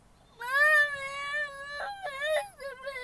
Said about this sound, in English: I'm recording, and everybody going to hear you on my podcast. They going to hear you crying in the background.